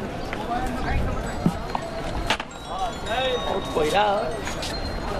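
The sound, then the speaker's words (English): Cows' hooves clop unevenly on a paved street in Varanasi, a few distinct knocks standing out against a busy outdoor bustle with indistinct voices chattering in the background. “When you come to Varanasi as a foreigner, one of the first things you notice is all these cows walking around everywhere.”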